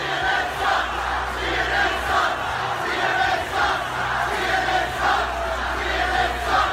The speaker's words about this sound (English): in unison, the crowd overwhelmingly shouting CNN sucks and telling Jim Acosta to go home.